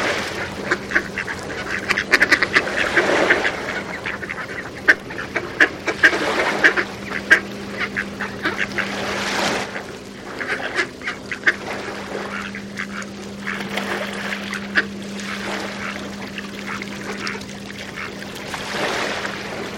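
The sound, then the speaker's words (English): A flock of marsh birds quacks and honks nonstop at a bird feeding station in a front yard in Connecticut, calls overlapping in a busy chorus with sharp bursts throughout, over a low steady hum in the background. “Twice a year, they take over the bird feeding station in author Mark Seth Lender's front yard.”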